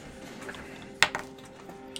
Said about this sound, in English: Is that a dice tower? I love the sound of that. Yeah, he got the black walnut version of this, but with the full tower.